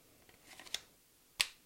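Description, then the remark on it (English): A Glock 43 X pistol with a Shield magazine is slipped into the small top pouch of a bag: soft rustling of fabric, then two crisp clicks, the second louder, with no talking. “But yeah, that's where I put that. So this top pouch will fit Glock 43 X.”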